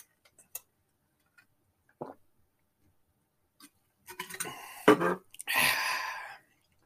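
A few faint clicks and taps, then a burst of sipping and gulping followed by a long, breathy exhale after someone drinks fresh, ice-cold water.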